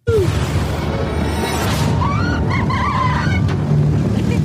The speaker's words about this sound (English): how are you supposed to hear anything when you got that damn tractor running like that